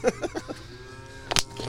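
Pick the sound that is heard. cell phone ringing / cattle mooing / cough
cattle mooing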